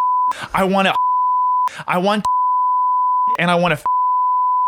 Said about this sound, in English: you got a good opportunity there for a nice bleep.